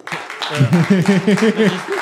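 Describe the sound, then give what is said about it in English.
An audience applauds, a steady wash of clapping mixed with voiced cheers and whoops that rise and fall throughout, fairly loud for the whole two seconds. “Let's turn this mic on with some applause.”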